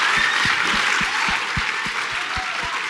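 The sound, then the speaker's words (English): Loud, dense audience applause at the Athena Film Festival for Paul Feig and Kate McKinnon fills the whole three seconds with steady clapping, while a regular low thumping pulse beats underneath at a quick, even pace. “On that note, I'd like to thank Kate and Paul for coming, and I'd like you all to put your hands together one more time for the Athena Film Festival leading man, Paul Feig.”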